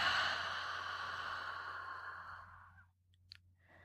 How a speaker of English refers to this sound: Let's do it again. Ready? 3 quick sniffs. And a long exhale.